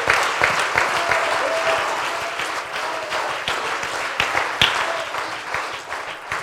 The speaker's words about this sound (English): A hand clap of praise.